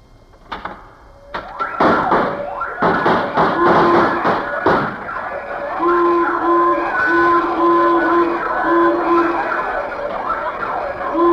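A burst of metallic clanks and thumps as Mr. Benny opens his safe gives way to a loud vault burglar alarm, installed by a bandleader: repeated honking blasts in a steady rhythm layered over a wavering, wailing siren tone.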